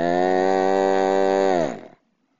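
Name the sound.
cow mooing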